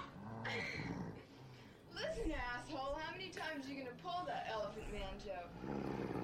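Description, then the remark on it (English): A dog growls, its low rumbling rising into wavering whines and yips. The sounds run loud and almost continuously for several seconds. “Did I hear growling in here?”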